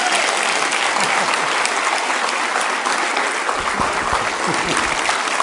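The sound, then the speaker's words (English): Steady, dense applause from a large audience fills the whole stretch, loud and sustained with many hands clapping at once and no one speaking over it, given as a man comes up to speak. “And as he comes up here, you can give him a round of applause, and I'll pray for him.”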